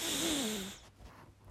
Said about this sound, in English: Breathe it in. Deep breaths in through your nose. And out through your mouth. In through your nose.